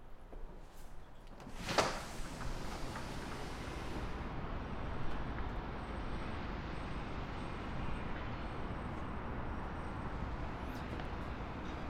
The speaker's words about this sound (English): We'll probably actually get a pretty good sense of the difference in sound as we open up this lift and slide door. The attenuation is quite remarkable.